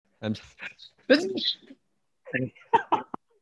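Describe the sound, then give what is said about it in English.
A sharp, loud sneeze bursts out with a breathy hiss at its end, and a couple of short spoken phrases follow after a brief pause. “Bless you, bro. Thank you.”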